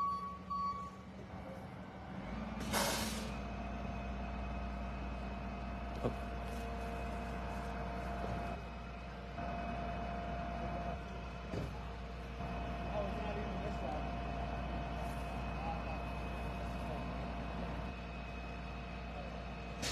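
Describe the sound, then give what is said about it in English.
A suspect's heavy truck being removed rumbles with a sharp burst of air-brake hiss early on, then steady engine drone and faint reversing beeps, with voices murmuring in the background. “And they're going to remove this truck, the suspect's truck.”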